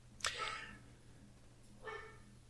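A female dog barks twice indoors, a sharp first bark followed after a pause by a softer second one, over a low steady hum.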